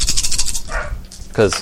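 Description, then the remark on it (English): A quick burst of seven dice rattling and clattering onto a hard surface, fairly loud, followed by a brief vocal exclamation. “Listener, I just rolled 7 dice and no hits.”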